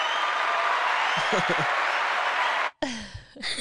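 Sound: clapping sound effect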